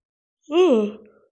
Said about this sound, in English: I love like, sorry, another yawn. I'm going to be yawning throughout this episode. I'm just very exhausted.